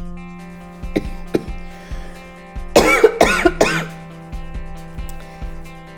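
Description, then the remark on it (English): A person with a chest complaint gives a loud burst of three harsh coughs in quick succession, preceded by a couple of short throat-clearing sounds over a low steady hum, with no talking. “Yeah, sorry about the coughing.”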